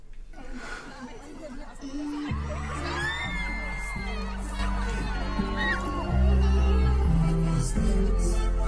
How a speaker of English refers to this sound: You can hear the crowd are giving it their all anyway at the moment.